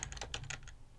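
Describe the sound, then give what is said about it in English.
Rapid clicking of keys on a computer keyboard, a quick burst of several crisp taps over a low background hum, with no one talking. “I know, however, not too long after, I'm typing in a thing so I can make sure I get this right.”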